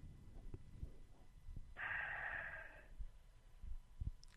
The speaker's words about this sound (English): I like the out loud breathing.